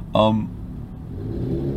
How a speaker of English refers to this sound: Jeez, I hate loud cars. I really do. Like, you're really loud for no reason. You know, I can see if it's like a Lamborghini, but it's not. Like, stop it.